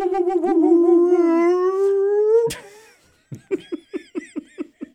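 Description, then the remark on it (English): A person imitates howler monkey calls, first with a long, wavering, rising howl, then a short pause and a rhythmic series of about eight quick, grunting hoots. “Now enjoy the next 20 minutes of howler monkey noises. Done not very well.”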